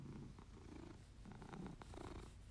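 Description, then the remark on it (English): A female cat purrs softly and steadily while sitting on a person's lap, a continuous low rumbling drone with a gentle pulsing rhythm, heard on its own without any talking. “She's purring, so I wonder if I was like, if I pause for a second, if you guys can hear her.”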